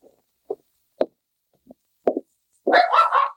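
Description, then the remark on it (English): A small, friendly dog jumping up on a man at a cabin on a snowy trail gives a series of short, sharp yaps spaced about half a second apart, then breaks into a longer, louder, whining bark at the end. “Hey, quiet, I said. Hey, quit jumping on me. Friendly little cuss, aren't you? Down, I say.”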